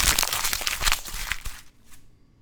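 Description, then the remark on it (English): Loud crinkling and crunching of a sheet of paper being balled up for about a second and a half, then a brief soft rustle as it is thrown away, with no voices. “Hope you could hear me throwing that piece of paper away, because that game was garbage.”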